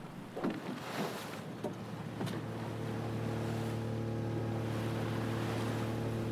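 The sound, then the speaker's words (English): A steady, low droning hum of ferry engines rumbles from a distance as the ferries move away, settling into a constant tone after a few soft knocks and splashes at the start, with no voices. “Fuel-guzzling ferries moved in the distance.”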